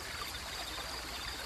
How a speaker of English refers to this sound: The rustle of the fresh green grass, the flutter of butterfly wings, the whisper of the gentle wind, and the lovely song of the brook.